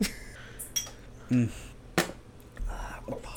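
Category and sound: household object, glasses clinking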